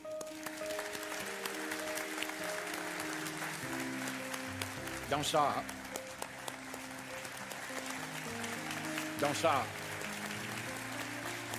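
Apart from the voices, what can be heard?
audience clapping hands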